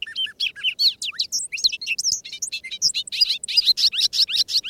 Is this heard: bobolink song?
yes